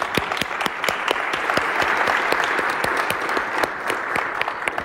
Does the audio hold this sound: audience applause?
yes